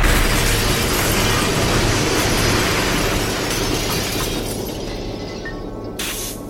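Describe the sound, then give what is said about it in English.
An 18-wheeler truck loaded with pine logs, with Langrock on the door, smashes through a gate and security shed, across a driveway and lawn, and into a house, a loud, sustained roar of crunching and shattering debris that tapers slightly, with a final burst of breakage near the end. “He drove it right through the gate and security shed, plowed it across the driveway, the lawn, and then crashed it right into the house.”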